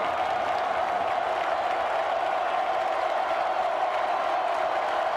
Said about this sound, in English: Third and 18 from the 10. Listen to this crowd.